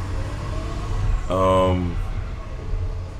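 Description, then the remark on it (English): A steady, low engine rumble from a passing truck fills the whole few seconds, with a short tonal voice-like sound rising over it midway. “The rumbling or the truck? The rumbling. Yeah. From the truck.”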